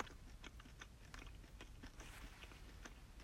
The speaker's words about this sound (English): You can swallow it now. You've been chewing that thing for like